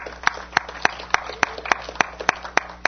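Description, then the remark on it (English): An audience claps together in a steady, even rhythm, about three sharp claps per second, crisp and moderately loud, with no voices over them. “Yeah, that is worth clapping for.”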